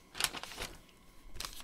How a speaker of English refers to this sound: Paper sticking together.